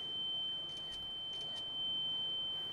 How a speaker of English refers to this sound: It's a mosquito. Here, have a look. Damn. An ultrasonic anti-loitering teen deterrent solution used to disperse unwanted youth gatherings. This high frequency can be heard by young people 13 to 25 years old.